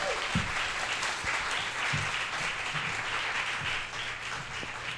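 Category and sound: crowd, audience applause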